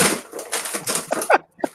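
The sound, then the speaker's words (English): Someone rummages through a junk drawer in a house, looking for a flip phone: a steady jumble of rattling, clinking and scraping objects, irregular and fairly loud, with a couple of brief squeaky tones near the end and no talking. “I'm just rooting through the drawer, my junk drawer here.”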